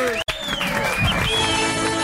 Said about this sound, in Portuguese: Primeiro, uma salva de palmas para essa turma que veio aqui.